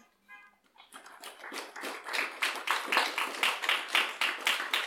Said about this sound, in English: This is the most clapping I've had in decades.